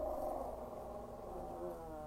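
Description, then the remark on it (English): A guard dog growls low and steadily for a couple of seconds, a continuous rumbling snarl at fairly quiet volume with no speech over it. “It's my guard dog.”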